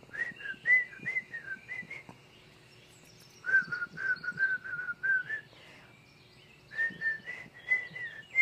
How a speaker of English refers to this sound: But I figure if you're whistling to the whistling, if you're whistling to the weekly energy story, can I still whistle?